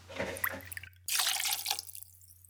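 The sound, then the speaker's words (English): Two ounces of Bayou Rum, a silver rum made in Louisiana, pours into a jigger or glass for a cocktail in two splashy bursts separated by a short pause, the second stream fuller and louder before trickling off, with a low steady hum underneath. “For this batch, I'm going to use Bayou Rum. It's their silver rum made in Louisiana. And we're going to do 2 ounces of that.”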